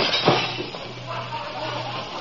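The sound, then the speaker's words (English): A hammer strikes and breaks a glass car headlight lens in one sharp, bright crack early on, followed by a low steady hum and a faint scattered rattle. “Bust the headlight lens.”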